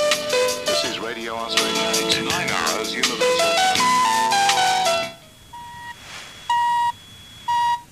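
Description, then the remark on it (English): A radio top-of-the-hour time signal on an FM station in Fiji, recorded in 1993: a bright melodic jingle plays, then stops, followed by a series of clean, evenly spaced electronic pips sounding clearly against near silence. “they were taking the top of the hour time signal from Radio Australia”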